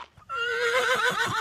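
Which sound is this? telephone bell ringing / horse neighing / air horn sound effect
horse neighing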